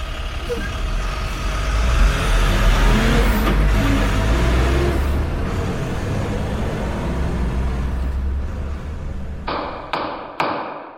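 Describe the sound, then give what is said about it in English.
A heavy truck engine rumbles loudly and steadily, surging as it pulls away, with a couple of sharp knocks near the end as it fades. “Why don't we start to get out on the street, get into our truck, and start selling these Hobbs bootleg stuffed animals?”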